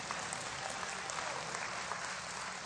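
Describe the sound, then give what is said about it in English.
An audience applauds steadily, giving the Lord a hand clap at the preacher's call during a sermon, many hands clapping together in a dense, even patter that holds at a moderate level for the whole stretch, with no voices standing out. “Give the Lord a hand clap, somebody.”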